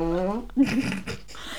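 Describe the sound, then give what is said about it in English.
A voice attempts a Wookiee growl: a low, buzzing, wavering vocal tone followed by rough, sputtering bursts lasting under two seconds, coming out more like a blubbery raspberry than a roar. “That was more of a fart sound than a Wookiee sound.”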